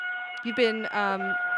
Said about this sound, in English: if she can actually ring the lunk alarm one more time